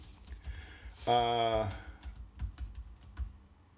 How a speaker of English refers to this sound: Wait, Neil Armstrong. Yeah, sorry. I was just typing in the wrong thing.